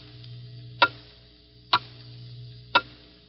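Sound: clock ticking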